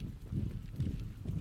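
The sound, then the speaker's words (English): Cavalry horses charging at full speed, their hooves pounding in a heavy, rolling rhythm that stays loud and low throughout, with surges of thudding roughly every half second and no voices. “to hold firm as the Danava cavalry charged at them at full speed.”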